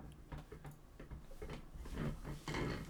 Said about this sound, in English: I hope you guys are enjoying squeaky chairs and clicking, cause can you hear the squeaky chairs? Oh yeah, for sure.